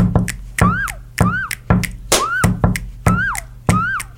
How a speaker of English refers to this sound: grooves that I made just by knocking and clapping and snapping and bumping on my desk